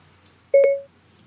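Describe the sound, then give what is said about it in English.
The Siri voice assistant's activation chime on a smartphone: a brief electronic tone with two quick pulses that merge into a held note, clear, lasting under half a second with no talking. “I've got here on my phone this sort of Siri thing.”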